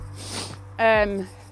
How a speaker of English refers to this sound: Another thing, sorry for the sniffles. Every time I'm on a walk or in fresh air, I get the sniffles.